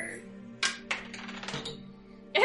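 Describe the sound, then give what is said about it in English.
Dice rolled for a strength check clatter across a hard tabletop in a few quick bursts: sharp clicks, a short rattling tumble, then a fresh burst of clattering at the very end. “You rolled a 15.”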